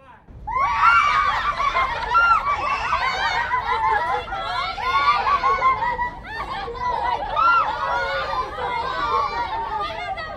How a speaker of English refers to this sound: Like we did some kind of fake setups where, you know, we'd say, all right, everybody, scream and then laugh.